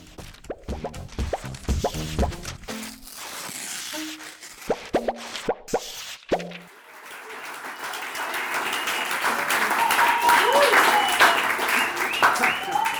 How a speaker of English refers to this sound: Thank you very much for that very warm round of applause. We're here tonight for our special Independent Magazines of New York night.